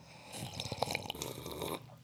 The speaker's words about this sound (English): I like this new tradition of serving the coffee on the microphone, so get used to it, guys. Yes, I like slurping in the microphone.